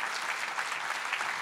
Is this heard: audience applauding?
yes